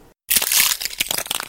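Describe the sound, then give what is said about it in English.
A sudden sharp crack breaks a brief silence, followed by a second of dense crunching and splintering as something shatters into pieces, loud, with no voices. “is the sharp sound of something breaking into pieces.”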